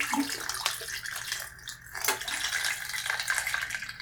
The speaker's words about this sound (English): I poured my fixer back into the original fixer bottle.